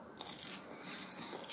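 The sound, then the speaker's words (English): A soft bite into pale, doughy garlic bread with a garlic and butter topping, a muted tearing sound with little crunch, followed by quiet chewing, heard alone with no talking. “You can probably tell there's not really that much of a crunch. It's more of like a doughy, cakey consistency to that.”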